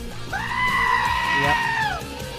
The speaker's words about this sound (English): The goat is scared.